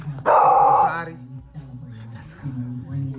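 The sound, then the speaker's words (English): A dog named Chloe lets out one loud, drawn-out bark with a growling edge, then falls quiet as low voices talk in the background. “Just had to cuss out the damn dog.”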